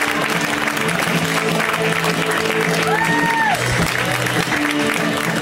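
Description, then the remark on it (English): A comedy show audience claps and cheers steadily for several seconds to welcome the next comic, who is visiting from New York. A dense, even wash of applause with a brief high whistle cutting through midway. “How about a huge round of applause for Will Miles?”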